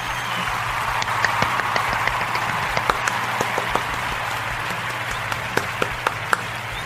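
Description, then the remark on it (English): Steady applause from a crowd fills the whole stretch, a dense wash of clapping with sharper individual claps popping out now and then, at a moderate, even level with no talking. “Let's give him the applause.”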